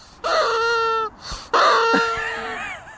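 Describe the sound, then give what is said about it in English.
A squeezed squeaky toy chicken, a mascot called Squeaky, lets out two loud squawks: a steady honking squeal, a brief pause, then a longer one that wavers and trails off. No one speaks. “That's our little mascot, Squeaky. A chicken? Yes, Squeaky's travel rustles. Give him a squeeze there.”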